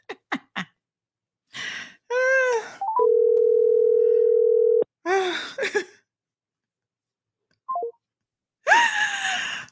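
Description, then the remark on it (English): A steady, unbroken dial tone drones for about two seconds after a caller hangs up the phone, framed by short clicks and dramatic gasps, sighs and moaning vocal sounds before and after it. “She did not just hang up the phone on me.”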